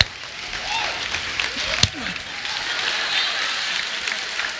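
An audience claps in a dense, steady patter that lasts the whole few seconds without fading, with one sharp crack partway through and faint voices mixed in under the applause.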